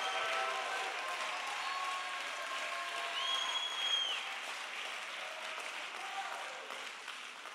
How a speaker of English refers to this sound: I wonder, can you clap your hands and give God praise right now?